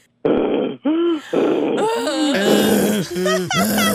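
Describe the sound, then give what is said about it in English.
A voice clears its throat and runs through a string of loud, growly grunts and rising-falling vocal sweeps, a few seconds of continuous warm-up noises with no words. “Let me clear my throat.”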